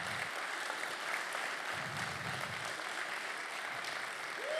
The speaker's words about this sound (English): And we just want to say a massive, massive thank you to everyone who served yesterday and to everyone who serves on our cleaning team month in, month out. So why don't we give them a massive round of applause?